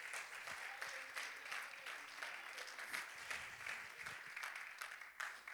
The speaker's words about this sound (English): Clap your hands unto the Lord, amen.